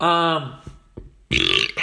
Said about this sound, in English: I just fucking burped.